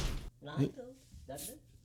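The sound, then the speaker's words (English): A single loud, abrupt door thud as someone walks in, then people start talking right after it. “just walked in here, taped a note to the door, just a 8x11 piece of paper.”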